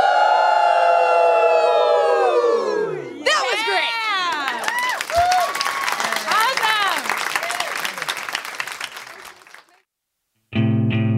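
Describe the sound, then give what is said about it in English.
A live audience gathered around the mic howls like wolves, long sliding cries rising and falling together over cheering and clapping. The noise fades to silence, then a short loud tonal burst cuts in. “And then we all howl like a wolf.”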